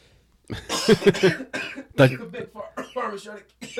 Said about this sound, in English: I thought you could stop coughing on command. I got a really bad case of it there just a second ago